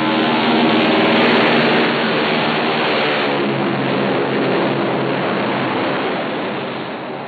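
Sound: airplane taking off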